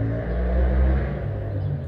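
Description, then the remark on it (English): A motorbike rumbles past with a steady low engine drone and harmonic whine, swelling slightly in the middle before easing off. No one speaks over it. “Sorry about the motorbike.”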